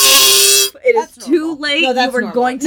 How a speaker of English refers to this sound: this is essentially my review for the fart whistle. It is... a whoopee cushion that you blow into, basically.